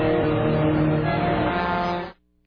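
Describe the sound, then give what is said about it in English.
Loud, sustained blaring of big rig truck horns, several overlapping over rumbling engine noise for about two seconds before cutting off abruptly into near silence, as more than 300 trucks drive through downtown Washington, D.C. in the rain in a protest over rising gas prices. “More than 300 trucks slashed their way through downtown Washington in the rain with their horns blaring.”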